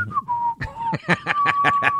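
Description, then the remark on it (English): A person whistles a steady, drawn-out tone that dips slightly, imitating air rushing past, with a rapid run of breathy, rhythmic puffs underneath in the second half. “and it was like it was whistling. Like you're whistling down the hallway.”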